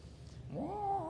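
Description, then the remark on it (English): A voice imitates a prowling cat's yowl: a low rumbling start that rises into a drawn-out, wavering, nasal wail, fairly loud, with no other talking. “So I was sitting there yesterday out in the yard, and I hear this sound of the prowling cat.”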